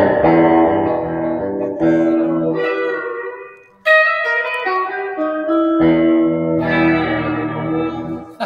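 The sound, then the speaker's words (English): Twangy electric guitar plays a bright surf-style melody drenched in reverb and echo, with ringing sustained notes and quick runs, loud and steady with no voices. “as a 9 and 10 year old living in LA, there was a lot of surf music shows on TV.”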